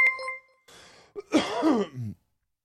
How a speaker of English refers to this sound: God, I'm really coughing from this bung.